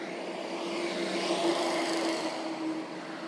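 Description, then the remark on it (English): A truck engine rumbles steadily, swelling slightly in the middle as it goes by, with a broad whooshing road noise and a low humming tone throughout; no one speaks. “hold on, a truck coming.”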